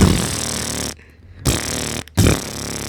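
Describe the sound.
A voice imitates booming car subwoofer bass, like a 12 or 15 in the back of a Honda Civic: three loud, buzzy, low bursts with short gaps between them, rattling and distorted like a thumping trunk speaker.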